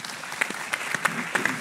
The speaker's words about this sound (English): Applause.